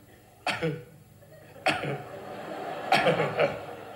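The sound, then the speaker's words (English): A voice does an impression of Tommy Cooper's motor car struggling to start on a cold morning: three sputtering, cough-like bursts about a second apart, each dropping in pitch, the last one rougher and longer. “It's an impression of Tommy Cooper's motor car starting up on a cold morning.”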